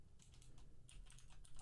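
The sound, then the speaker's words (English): Rapid typing on a computer keyboard, a quick run of light clicking keystrokes in uneven bursts against a low background hum with no voices, as someone types a search for a baseball player. “I hate that I'm typing black baseball player.”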